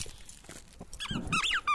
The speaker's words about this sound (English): runs around the apartment, wagging her tail, chewing on the squeaker.